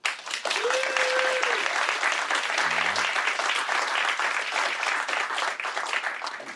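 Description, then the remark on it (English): An audience at a debate claps steadily and densely for several seconds at an even, loud level to vote yes, that wokeness is killing comedy, with a brief whistle and a short voiced shout rising out of the applause before it fades at the end. “Please clap if you think, yes, wokeness is killing comedy.”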